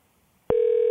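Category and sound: signal or alarm, phone ringing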